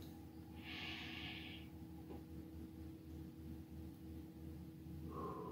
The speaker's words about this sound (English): Before we read from that, I invite you to take a deep breath in.